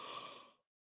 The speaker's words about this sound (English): Sorry, I'm yawning.